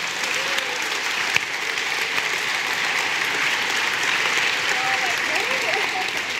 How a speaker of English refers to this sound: Would my bosses, if you're my boss, i.e. you're a child, would you stand up so everyone can look at you and clap? Woo-hoo! If everyone would clap.